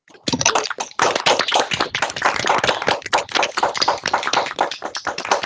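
A round of applause over a video call for a colleague winning the 2020 Shoemaker Award for Lifetime Achievement in Communications and Exceptional Service: dense, overlapping clapping from several people, loud and steady for about five seconds, sounding thin and compressed, with no one speaking.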